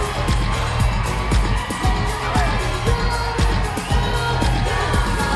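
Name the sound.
crowd applauding and cheering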